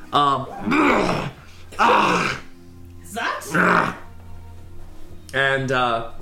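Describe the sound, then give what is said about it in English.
A voice imitates horses' strained, labored breathing and a half-elf's coughing: about five loud groaning huffs and wheezes in a halting rhythm, with short pauses between bursts. “And yeah, there's strained breathing from horses and some coughing from a half-elf.”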